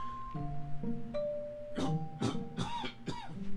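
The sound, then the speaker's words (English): A run of about four harsh, dry allergy coughs in quick succession, fairly loud, over a steady low droning tone in the background. “The blasted allergy cough again.”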